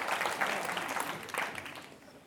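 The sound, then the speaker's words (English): An audience claps for everyone who has run a marathon, a steady burst of dense, crackling applause that stays fairly loud before gradually thinning and fading toward the end. “Give everyone who's done a marathon a clap.”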